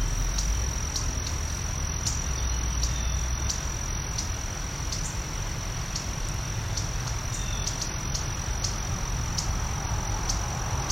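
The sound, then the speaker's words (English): Agitated buntings give sharp, repeated chip calls, short high ticks spaced roughly every half second, over a steady high insect drone and low background rumble. No one speaks. “These buntings are very unhappy.”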